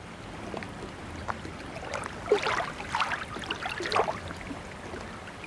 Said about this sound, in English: But for now, enjoy this generic sample of lapping water sounds.